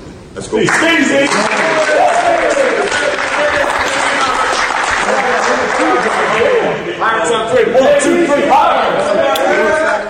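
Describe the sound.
The ECU basketball team breaks into loud, sustained applause that starts abruptly and keeps a steady, dense clatter, with excited shouting and voices mixed in throughout.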